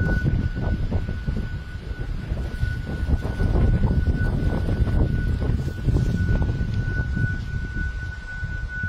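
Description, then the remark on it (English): A steady, eerie whistling tone, thought to come from a new luxury seafront apartment block in Folkestone when it is windy, hangs over a constant roar of gusting wind, holding one pitch for the whole stretch with no voices. “It's thought to be coming from a new luxury apartment block right on the seafront when it's windy.”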